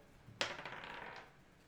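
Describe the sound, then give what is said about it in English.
Dice tumble onto a table with a sharp initial clack, then a quick rattle of small bounces that fades out within about a second, fairly quiet, with no talking. “Good thing I have my Bardic Inspiration dice at the ready.”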